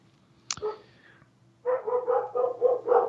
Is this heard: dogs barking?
yes